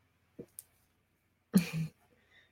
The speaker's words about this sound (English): excuse me, I got to cough for a second.